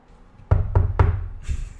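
Three quick, firm knocks on a front door, loud in a steady rhythm, followed by a softer thud and a brief higher-pitched sound.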